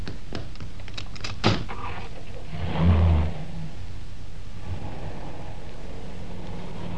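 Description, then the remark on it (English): Car doors open and shut as two people switch seats so the other can drive: a few light clicks, a sharp slam, then a deeper muffled thump a second later, heard from inside the car over a low idle hum, no voices. “Oh, don't bother to get out. I'll get out my side.”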